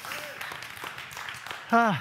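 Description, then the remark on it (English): A crowd applauds steadily during a sermon, a dense patter of many hands, and a voice rises loudly over it right at the end. “I didn't do that for applause, and that's not what I'm preaching about.”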